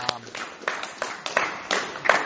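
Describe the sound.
An audience claps their hands together for the praise and worship, a steady, irregular patter of sharp slaps lasting a couple of seconds, moderately loud, with a brief voice at the very start.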